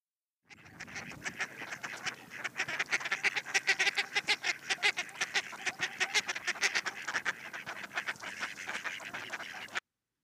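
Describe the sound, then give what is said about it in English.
A mallard duck (Anas platyrhynchos) quacks repeatedly in quick, rhythmic bursts, loud, with no talking, the harsh calls running steadily for several seconds before stopping abruptly. “The mallard is known by the binomial name Anas platyrhynchos.”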